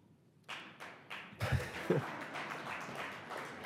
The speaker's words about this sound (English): Thank you. And the applause goes to President Reagan and Ibn Khaldun, I think both of them.